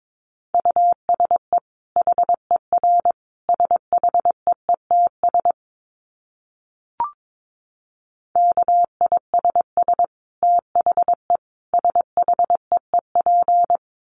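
A single clean Morse code tone keys out rapid dots and dashes at about 22 words per minute, in two bursts separated by a short pause with a faint blip.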